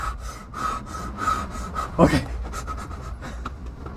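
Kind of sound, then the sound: vocal imitation, imitated heavy breathing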